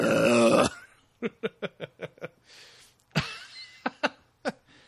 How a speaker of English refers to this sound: Of my wife being horrified by our dual fart attack.